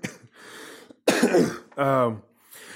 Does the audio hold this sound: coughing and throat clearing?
yes